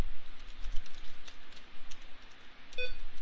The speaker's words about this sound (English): And I'm sorry, I'm still kind of typing.